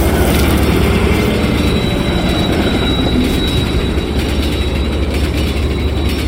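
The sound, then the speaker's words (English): A heavy, continuous roar of a 1,000-ton train thundering past, deep rumbling with a thin high metallic whine riding on top, loud and steady throughout with no voices. “Jack, I thought, as I watched the train thunder by the place where Trick used to be.”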